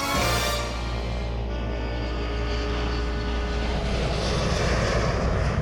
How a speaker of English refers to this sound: So starting February 3rd, 1961, a looking glass jet was always in the air, 24 hours a day for 29 years.